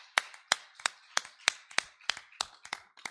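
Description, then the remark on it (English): Steady rhythmic hand clapping in praise at an afternoon church worship service, about ten sharp, crisp claps at an even pace, moderately loud, with no voices. “Give him one more hand clap of praise this afternoon.”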